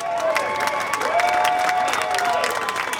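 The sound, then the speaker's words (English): Service members and staff at a traditional send-off ceremony at the Pentagon applaud and cheer steadily as a departing chief is clapped out, dense clapping filling the sound with whoops and raised voices on top, and a few sustained shouted tones rising above the din. “We in fact, spoke to him just an hour or so before he was clapped out of the Pentagon here.”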